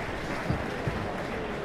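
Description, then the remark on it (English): A thin smattering of polite applause from the back of the audience, a few scattered hands clapping softly in a steady, fairly quiet patter for a couple of seconds, with no voices over it. “That smattering of polite applause from the back tells me that some people thought it was half time.”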